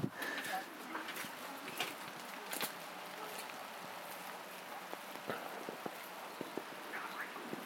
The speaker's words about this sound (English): It's raining more heavily now.